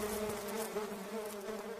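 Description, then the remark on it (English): A bee buzzes steadily throughout, a continuous droning hum with a slight wavering pitch, not loud, with no voices over it. “Buzz off.”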